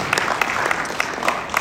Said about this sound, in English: And so I just want to give them a round of applause, thankful for these men who have served us this last year.